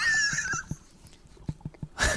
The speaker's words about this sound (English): Did you cough? No, that was like over there somewhere. Oh my! No, we gotta redo that. The dog coughed.